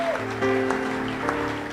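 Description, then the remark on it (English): A conference crowd claps steadily to honor and celebrate Bishop Dagiwad Mills, a dense wash of hand-claps with a few sharper claps standing out, while sustained musical tones hold underneath. “So let's clap our hands and appreciate, honor, and celebrate Bishop Dagiwad Mills.”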